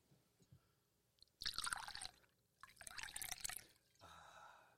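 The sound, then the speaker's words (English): Liquid is poured into a glass as a refill in two splashy bursts with a brief pause between, followed by a softer, trailing trickle. Fairly loud, with no voices. “I had to pour three times.”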